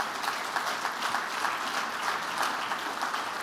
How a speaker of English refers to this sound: Clap your hands and thank God for His word.